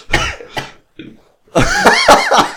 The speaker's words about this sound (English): You said that while I was drinking my tea and I nearly choked. And now I've got my first burp on the show.